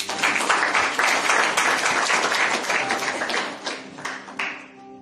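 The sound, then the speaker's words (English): A church audience claps steadily for a man among them during a Bible teaching, a dense wash of many hands with a few sharper individual claps, thinning out and fading toward the end. “Everything I want, he's just clap for him.”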